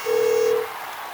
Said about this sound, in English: The phone is ringing.